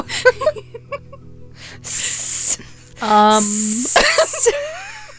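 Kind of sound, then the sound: animal, snake hissing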